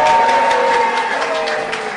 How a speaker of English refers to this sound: Put your clapping hands together, it's the last time you have to do it.